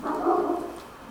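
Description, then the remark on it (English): A dog lets out a drawn-out, whiny bark that trails into a whimper, fairly loud, lasting about a second with no talking. “We better wrap this up before the dog goes crazy.”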